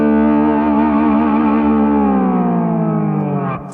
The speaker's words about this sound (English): So sometimes you have to tweak what you do, but you can blend the distortion here. I'll put a little bit on here.